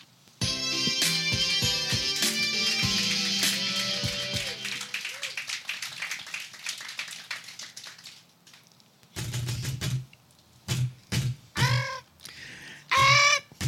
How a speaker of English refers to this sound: Squawking is heard from within.